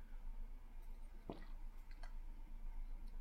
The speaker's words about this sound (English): Had to take a sip of water.